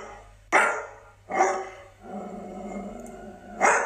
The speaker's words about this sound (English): was walking past the South River Park when his dog started to bark uncontrollably.